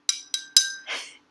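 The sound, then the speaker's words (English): Glass cups clink together three times in quick succession in a toast, each tap ringing briefly, followed by a short soft rustle; no one speaks. “Cheers. A toast to this episode.”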